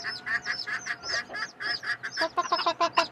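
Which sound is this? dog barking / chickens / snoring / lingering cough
chickens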